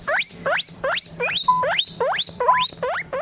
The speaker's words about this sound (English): The currently alive, but probably soon dead, North Island family pet guinea pig.